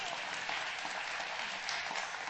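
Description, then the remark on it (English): An audience applauds Sherry, new CEO of MOPS International (Mothers of Preschoolers), with dense, steady clapping that keeps an even level for a couple of seconds, a continuous crackling wash of many hands with no voices over it. “So, yeah, you can clap for Sherry.”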